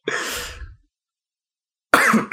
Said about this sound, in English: I still have a cough. That's news.